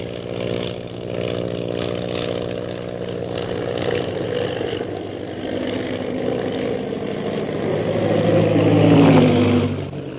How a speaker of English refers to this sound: Suddenly, Shanghai Lil's plane rocks crazily and goes into a spin, dropping swiftly toward the ocean below.